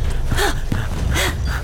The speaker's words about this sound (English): Wait, why are you breathing heavily? You're a robot. I wanted to fit in.